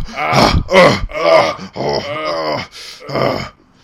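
A loud run of strained grunts, groaning exertion sounds and heavy breathing from wrestlers Undertaker and AJ Styles during their match, about six rough voiced bursts in quick succession with heavy breaths between, then fading out.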